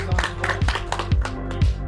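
Several people clap together in a quick burst of sharp, overlapping claps at moderate loudness, with a low steady tone humming underneath.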